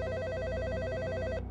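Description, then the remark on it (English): A telephone rings with a steady, rapidly trilling electronic bell tone that fills the moment on its own, loud, then cuts off abruptly. “Until the phone rang the first week of summer break.”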